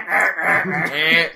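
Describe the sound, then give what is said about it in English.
A duck quacks three times in quick succession, nasal and raspy, loud, with no other sounds around it. “That actually does sound like a duck.”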